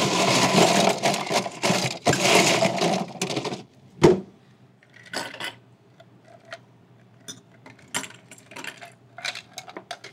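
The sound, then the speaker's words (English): A cocktail shaker filled with ice is shaken to make a cocktail, rattling hard for about four seconds in a rapid, dense clatter, ending with a sharp knock. Scattered light clicks and taps follow in the quieter stretch. “And we're shaking.”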